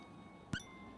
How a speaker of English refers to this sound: And then before your eyes, a small red ball finishes bouncing down the last few steps and rolls with a final squeak to rest at your feet.